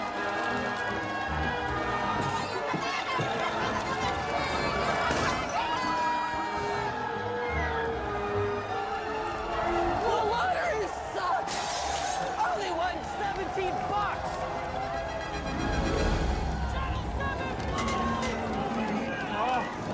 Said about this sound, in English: to the point in this next scene, we see that the whole village, or the whole town that he lives in is rioting, everything's falling apart.